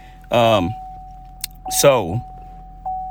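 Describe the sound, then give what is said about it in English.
Steady low rumble inside a moving truck on the way back from church, with a faint constant whine, two short bursts of a voice, and a light clicking jangle. “I'm in a truck right now.”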